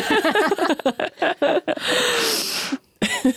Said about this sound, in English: I'm going to blow my nose.